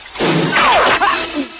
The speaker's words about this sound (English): Rambo hunkers under a rocky overhang and fires his bow.